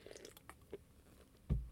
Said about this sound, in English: So, another little sip of wine here.